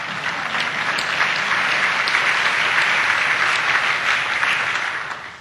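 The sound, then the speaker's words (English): Sustained applause from a sizable audience, a steady wash of many hands clapping at once, fairly loud and even throughout before tapering slightly at the end, with no voices. “Oh, yeah, you can clap.”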